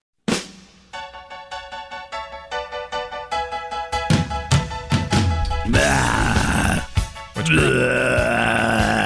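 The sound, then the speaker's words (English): A guttural zombie growl, starting as a series of pulsing, throaty grunts and swelling into a loud, sustained rasping snarl with a brief break near the end. No one speaks. “Is that a growl or a... Or that's something making you sick? It's a zombie, man.”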